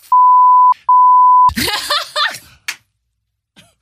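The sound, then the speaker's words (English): Two steady, high-pitched censor bleeps, a short one and then a longer one, cut over a swear word, followed right away by an outburst of laughter and voices. “I can't believe he just swore.”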